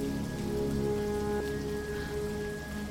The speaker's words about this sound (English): The next morning the rain continued, the landscape a grey blur.